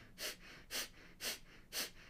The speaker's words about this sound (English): like strong pranayama practices to work with the Mercury retrograde, as in like breath of fire or Kapalabhati breathing, which is a quick exhale through the nose, like sitting in meditative posture, doing that for 3 minutes.